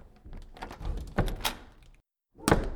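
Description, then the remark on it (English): A crimson door to a deliberation room creaks open with a rattling, shuffling sound, then after a brief silence shuts with a solid thunk, moderately loud. “The bailiff will escort you into the deliberation room to render your verdict. It's right there, behind the crimson door.”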